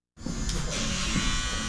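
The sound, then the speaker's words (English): Electric hair clippers at a barber shop on Chicago's Southwest Side switch on abruptly and hold a steady, loud buzzing drone with a bright metallic whine, continuing unbroken with no voices. “spent time at a barber shop on Chicago's Southwest Side to learn more.”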